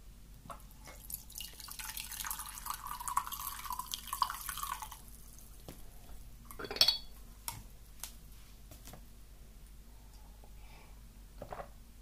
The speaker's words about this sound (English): I think I'm going to need some green tea already. This has been brewing for a little while. So give it a stir.